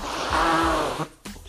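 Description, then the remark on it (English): A loud, drawn-out nose blow with a buzzy, honking tone, then a brief pause and a second short snorting blow. No one speaks. “I need to blow my nose.”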